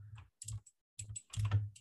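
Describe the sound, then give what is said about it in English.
Bursts of rapid typing on a computer keyboard in four short clusters, fairly loud, with clattering key clicks and a dull thump against the desk, separated by brief pauses. “That's not me typing to find out.”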